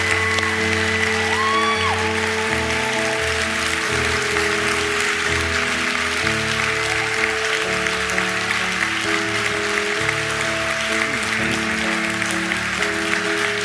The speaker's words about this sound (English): everyone around you, they're going to applaud as loud as they can. But it will not compare to the applause that the angels in heaven will be doing when you stand to your feet and remain standing.